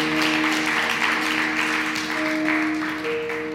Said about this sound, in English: And if you agree on that, give him a clap offering this morning.